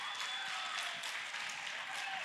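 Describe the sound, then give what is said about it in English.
Steady audience applause, many hands clapping in a dense, even wash of sound that holds at a constant level for a couple of seconds with no voices on top. “Yes, applause.”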